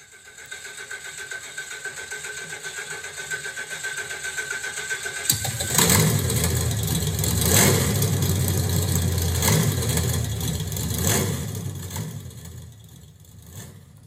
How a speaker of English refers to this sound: The battery cranks. The engine gives two or three low groans and starts. My God, it starts.